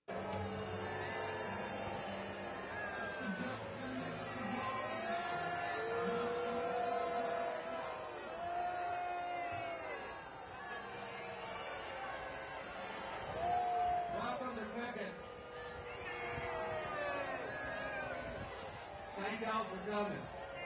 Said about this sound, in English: This is a huge Trump crowd, and they're all booing him.